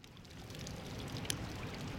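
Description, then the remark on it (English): A steady, continuous splash of falling water from a water fountain outdoors, outside Doheny Library, filling the scene with a constant rushing wash and no voices. “I'm sitting outside of Doheny Library, right next to this water fountain.”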